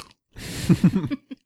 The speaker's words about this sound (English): Everyone can listen to us eat.